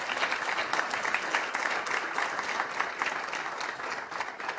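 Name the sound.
applause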